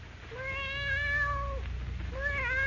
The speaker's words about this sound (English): Pale and trembling, Perry White stares at the cat on Jimmy Olsen's bed, a cold black cat that, awakened by the opening of the door, rises and stretches, mewing plaintively, its green eyes glowing like emeralds.